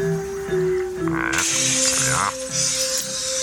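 A small glass gas vial, a capsule taken from Batman's utility belt, shatters partway through, a sudden bright crash whose crackling, tinkling high fragments linger for a couple of seconds over a steady low droning background.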